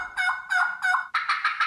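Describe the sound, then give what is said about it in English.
A contestant at the National Wild Turkey Calling Contest at the Turkey Trot festival imitates a wild turkey mating yell, producing a rapid series of loud, nasal yelps and gobbling notes, about seven in quick succession, with no other sounds around. “We have the National Wild Turkey Calling Contest.”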